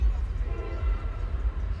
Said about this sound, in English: Here we go with a train going by.